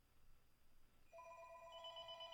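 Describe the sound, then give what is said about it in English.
Telephones ringing automatically start partway through after a quiet hum, a steady, bright electronic trill that holds on and grows fuller as higher tones join in. No one speaks. “The phones are ringing automatically.”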